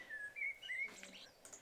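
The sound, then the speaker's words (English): Slow, low, mournful bird whistles: a few drawn-out, clear notes that slide slightly in pitch, sung softly with no voices, ending in a brief scratchy flutter. “It's really, really deep, it's quite melancholy, and it does sound a little bit reminiscent of a human whistle.”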